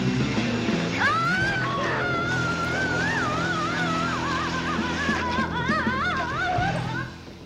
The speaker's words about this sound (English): There's the drill.